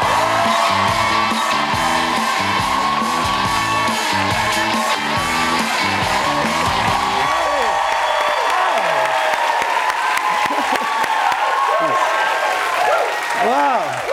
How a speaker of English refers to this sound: I don't know why I immediately do prayer hands every time. I just hear a clap. I think it's a sign of humility.